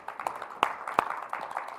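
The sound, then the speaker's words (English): An audience gives Jesus a praise clap, a dense patter of many hands with a few sharper, louder claps popping out above the steady crowd applause. “Come on, give Jesus a praise clap, if you will.”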